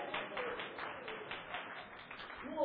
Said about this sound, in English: That applause sounded just like the applause for Phelps.